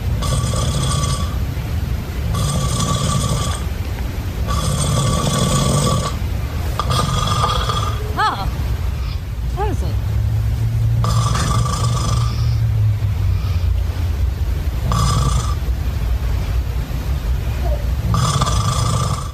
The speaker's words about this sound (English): Okay, here we go. Here is Lunchbox snoring.